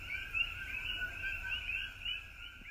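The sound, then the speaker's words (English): A dense chorus of coqui frogs calling after dark in Hawaii, countless overlapping high chirping calls blending into a steady, shrill drone that hardly varies in loudness, with no voices. “So far, I can hear lots of them, but I haven't seen any.”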